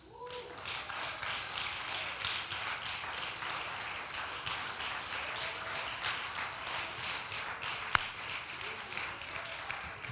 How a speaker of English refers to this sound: If you love him, will you stand today and give him one last hand clap of praise?